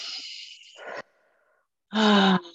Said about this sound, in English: Set another internal intention for yourself. Big breaths. Breathing from the belly.